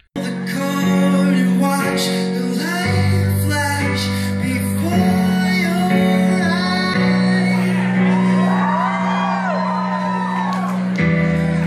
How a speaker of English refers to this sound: What a strange thing to cheer to. It's a little strange.